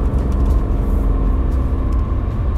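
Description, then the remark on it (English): Steady low engine rumble from inside a moving car with 54,826 miles on the odometer, a continuous droning hum with road noise that holds an even loudness throughout, with no one speaking. “This car is running nice, I gotta say.”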